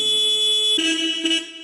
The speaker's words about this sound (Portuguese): Pessoal, estamos aqui com a buzina Paquerinha, né, conhecido como a Paquerinha.